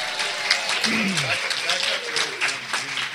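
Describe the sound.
A crowd applauds with dense, steady clapping throughout, while a few voices call out and chatter underneath the sustained wash of hands.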